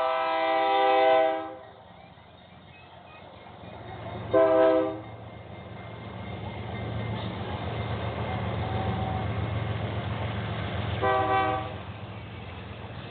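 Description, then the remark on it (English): A freight train of tank cars rumbles steadily past, its horn sounding three loud blasts: one at the start, a short one soon after, and another near the end. No one speaks. “Now that the one train gone east, now it's time for an empty tank train to head west.”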